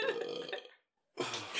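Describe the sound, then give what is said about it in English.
A person gives a deep, drawn-out burp, bringing up leftover cucumbers; it fades out, then after a brief silence another loud, rough burst of burping begins. “Here's another burp.”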